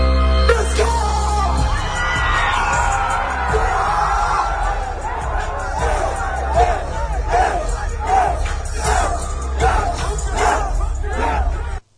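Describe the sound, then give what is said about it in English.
A large concert crowd roars, then settles into loud rhythmic chanting that stopped the show, with repeated shouted pulses over a constant low rumble before cutting off abruptly at the end. “Crowd chanting stopped the show.”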